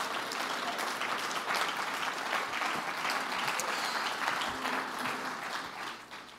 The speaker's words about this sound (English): Stand to your feet and clap your hands and say, I will remain tender.